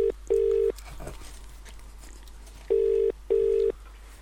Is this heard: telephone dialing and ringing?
yes